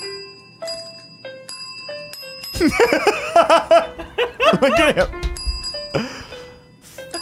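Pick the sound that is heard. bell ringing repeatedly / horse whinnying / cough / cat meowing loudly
bell ringing repeatedly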